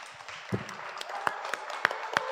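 An audience applauds in a steady wash of clapping that lasts a couple of seconds, with a few sharper, individual claps cutting through the dense, even patter.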